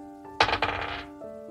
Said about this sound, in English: Roll a d20 in this game of Dungeons & Dragons. You know, oh yeah, dice. We use those, don't we?